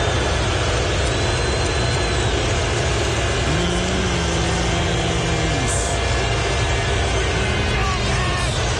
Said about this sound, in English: A chorus of boos. His family was there to offset the hostile crowd. That was almost every offensive play. Yeah. Every offensive drive he took the field, that's what the crowd did.